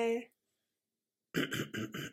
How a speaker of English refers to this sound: Wow, you had all that time before we pressed record to clear your throat. You wait until I press record and then you clear your throat. Oh, God, that's gross.